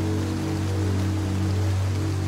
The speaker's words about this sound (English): I just open my door and see the rain fall from the sky, raining in the desert. Rain in the desert. What a gift.